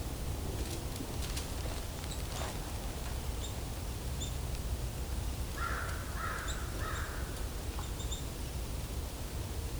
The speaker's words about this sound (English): Crows are kind of a separate flock